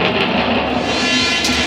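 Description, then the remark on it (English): A freight train rolls along the tracks with a steady, loud rumble and hiss that never lets up, with no voices over it. “Boxcar Dick is down the end of that train.”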